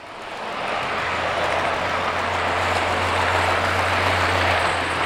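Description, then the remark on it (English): A model freight train rolls steadily along its tracks through a miniature town in the main room of a model railroad club in Milwaukee, a continuous rumble with a low motor hum that swells in over the first half second and then holds. “That's one of the model freight trains rolling through a tiny town in the club's main room.”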